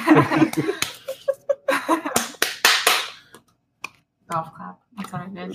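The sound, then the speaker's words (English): A quiet, sparse golf clap: a handful of soft, irregular hand claps, mixed with some voice sounds, followed by a brief pause and then more vocal murmuring. “Golf clap. That's what I did.”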